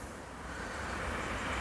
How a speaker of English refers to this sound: There's the train